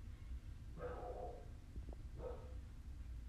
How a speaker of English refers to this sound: Dog barking downstairs and stuff. Hold on 1 second. 1 second. Sorry, you guys. I'm back. Dog was barking. I had to go see what's going on.